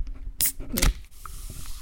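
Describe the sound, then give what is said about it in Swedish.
A bottle of flavored mineral water is opened: a quick crackle of the cap, then a bright fizzing hiss as the gas escapes, followed by quiet. “Men, korkar du upp en bira? Nej, jag korkar upp den absolut hetaste av alla drycker i Los Angeles i detta nu.”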